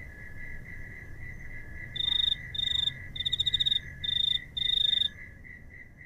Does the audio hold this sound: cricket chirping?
yes